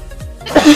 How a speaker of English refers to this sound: Yeah, see? All these coughs are because I'm sick, but also because I'm high.